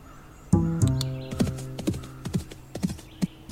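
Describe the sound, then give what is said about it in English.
A horse gives a loud, shaky whinny, then hooves clop in a steady, uneven rhythm on a hard surface, with no one speaking. “Whoa, there, easy now. Mary, what's wrong? Your horse is still over there.”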